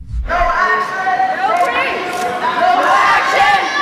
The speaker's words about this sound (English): You can hear people in the gallery screaming, no action, no peace, but they're down there on the floor, too, holding signs screaming, no action, no peace. Obviously disrupting the assembly, disrupting the legislation.